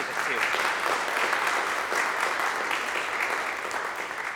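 A room full of people claps steadily, a dense, even wash of applause that stays loud and close for the whole stretch without any talking over it.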